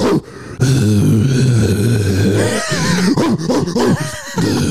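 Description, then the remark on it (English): A man's voice imitates the grunting and wheezing a huge dog made between its barks, a loud, strained, low growl that stretches on, then breaks into ragged, breathy wheezes and short rough bursts. “It sounded like a person was like grunting and wheezing in between the barks.”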